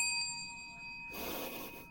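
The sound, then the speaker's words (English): A dusty hand bell rings once, its bright metallic tone hanging and slowly fading for about a second before a burst of rustling noise takes over. No one speaks. “I'm surprised the bell still works.”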